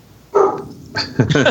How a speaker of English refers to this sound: It would seem the dog would agree.